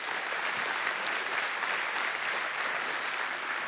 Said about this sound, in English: I'm so grateful for all of our veterans that fought for our country, and we all should. Yeah, we can clap for that.